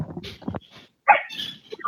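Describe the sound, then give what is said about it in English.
A person mimics a dog, producing a few short, loud bark-like yelps and whimpers in an uneven burst. “dog emulating”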